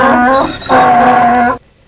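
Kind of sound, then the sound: animal, donkey braying sound effect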